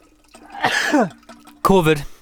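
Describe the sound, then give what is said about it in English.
A loud sneeze: a drawn-out voiced build-up, a short pause, then a sudden sharp explosive burst that trails off quickly. “I'm going to sneeze.”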